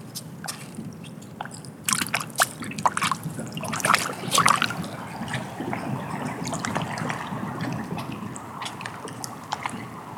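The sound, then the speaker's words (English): Water trickles and splashes steadily around other objects, with irregular drips, gurgles and small sloshing bursts over a continuous soft wash, moderately loud, with no voices. “And hearing the water negotiate its space around other objects soothes my soul.”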